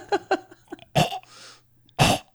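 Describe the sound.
A voice imitates a cat hacking up a hairball: short retching gags build into two loud, harsh coughing heaves with a raspy wheeze between, alone without speech.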